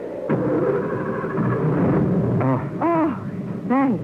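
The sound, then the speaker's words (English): A car engine, after the car crashed into boulders, rumbles and strains, revving up in a couple of rising-and-falling bursts toward the end as it tries to pull free. Loud, with no talking. “Will the car move?”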